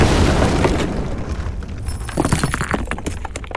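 A hand grenade, thrown by a German soldier at two Russian soldiers on a battlefield, explodes with a loud, deep rumbling boom, followed by scattered crackling and debris-like bursts as the blast fades over a few seconds.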